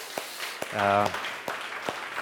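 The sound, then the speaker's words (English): A church audience applauds softly for a couple whose third son has just been born, a few sharp claps standing out from a steady wash of crowd noise, while a voice calls out briefly in the middle. “But can we also give Jean and Jeannie a warm applause, too?”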